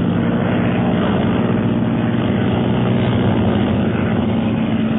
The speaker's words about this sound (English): The planes are dropping below us.